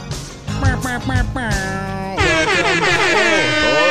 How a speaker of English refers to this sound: That was way better than my air horn.